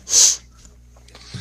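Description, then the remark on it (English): A single sharp, hissy sneeze bursts out, then quiet returns with only faint low rustling and a soft murmur near the end. “Sneeze.”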